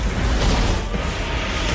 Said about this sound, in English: Explosions on the bridge!